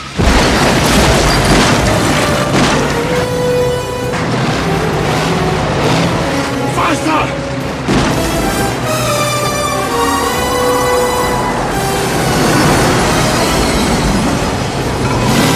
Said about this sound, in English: I thought, that's not a car, but damn, it's a good scene. And it's the T-55 battle tank that Pierce Brosnan drives around in GoldenEye.